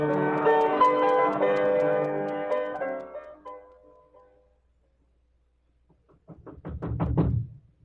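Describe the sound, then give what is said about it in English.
A swelling musical chord fades into a few seconds of silence, then a rapid burst of loud banging knocks by the Marshal on Chihuahua's door at night, about a dozen blows in quick succession. “Who do you think you are banging on people's doors this time of night?”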